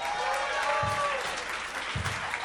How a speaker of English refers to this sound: That's nice. It's a nice round of applause, a bunch of nice people smiling.